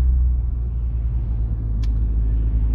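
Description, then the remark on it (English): An abnormal-load truck traveling on a tiny road: its deep, steady engine rumble fills the scene, loud, with one brief sharp click partway through and no voices. “That was an abnormal truck, and I don't know why anyone else wasn't panicking.”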